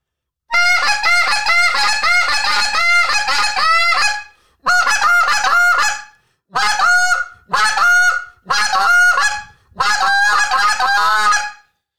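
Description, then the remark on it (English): Loud, high-pitched goose honks come in rapid bursts, a long run followed by several shorter strings of calls, piercing with brief pauses between, blown on a goose call. “It's a lot of moans and it's a lot of trains essentially, or honks.”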